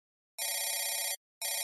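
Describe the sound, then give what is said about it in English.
A telephone bell rings loudly, one long trilling burst followed by a short pause and the start of a second ring, with no voices. “I don't know how long I'd been outside when the phone rang.”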